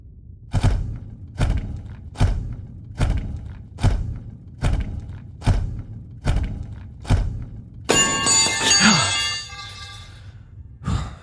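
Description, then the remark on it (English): A wrench falls with a bright metallic clatter that rings and fades out, preceded by a steady series of heavy, evenly spaced thuds. No one speaks. “Don't worry, it must have been a wrench or something.”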